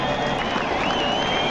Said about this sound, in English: Wasn't that lovely? That was a lot of carrot fans cheering for each other for loving carrots, and you too could be a part of this carrot-loving family of ours.